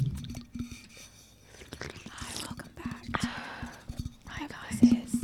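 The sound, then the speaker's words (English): Wet sloshing and squishing as water is swished around inside a mouth to make ASMR noises into a microphone, in irregular bursts mixed with soft breathy, whisper-like noises, quiet. “Oh yeah, let's slosh some water around in our mouths.”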